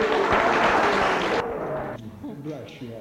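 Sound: audience clapping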